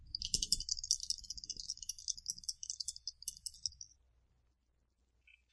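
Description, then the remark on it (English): Two dice clatter and rattle for about four seconds, a busy stream of small plastic clicks and knocks, then stop, with one brief tap afterward. “Alright, so that's 2 dice.”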